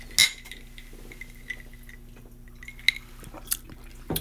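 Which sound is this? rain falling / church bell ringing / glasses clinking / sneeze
glasses clinking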